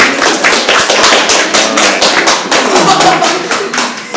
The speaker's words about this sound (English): Nothing hurts more than insincere applause.